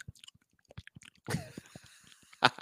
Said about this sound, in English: The only thing that would have been worse than that is if you were just chewing into the microphone. I can do that too.